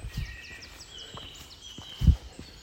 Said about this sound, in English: And there are birds whirring across the path and really feels like a great day today.